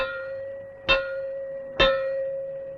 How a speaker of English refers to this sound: In some areas, the warning may be given by means of three gongs, like this.